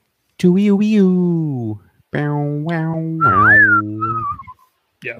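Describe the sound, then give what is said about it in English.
A voice sings a wailing spaghetti western movie theme, from a Sergio Leone film, in long sliding notes, then breaks into a brief whistled phrase, loud, with a short vocal sound at the end. “If I just did the whistle, that would have been sweet.”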